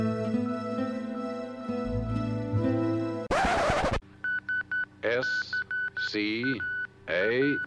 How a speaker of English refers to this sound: Colonel, I've picked up some sort of signal. It's Morse. Morse? Let me hear it.